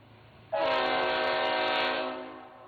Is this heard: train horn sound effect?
yes